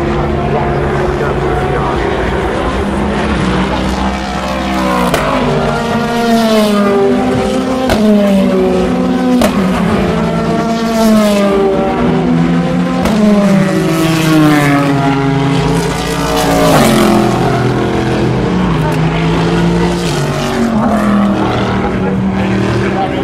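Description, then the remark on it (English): Race cars, among them Toyotas and the Ritchie Competizione Ferrari, scream past on a race track one after another, loud engine notes rising and falling in pitch as each sweeps by, overlapping continuously with no pause. “They are lovely sounds, aren't they? I could just sit here all day and let you listen to them.”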